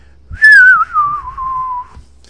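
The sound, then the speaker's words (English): A person whistles a short tune, the mystical video-game whistle that takes the player across the game: one clear sustained note sliding gradually downward for about a second and a half, with no talking. “You know, the and then the mystical whistle that would take you across the game.”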